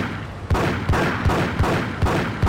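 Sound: video game gunfire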